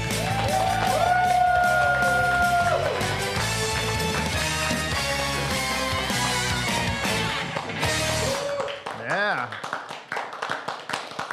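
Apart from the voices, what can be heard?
audience cheering and applause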